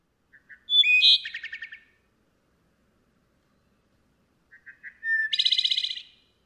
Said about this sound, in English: it would definitely be the wood thrush. That melodic flute, it just like I can close my eyes and listen to that song and it will transport me to like some magical place.